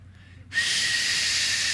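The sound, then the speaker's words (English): After a brief quiet moment, a person produces a sudden breathy whistle by mouth, an airy, hissing tone held steadily, with no talking. “Be willing to get really quiet and listen for the whistle.”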